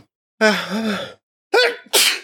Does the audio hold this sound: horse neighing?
no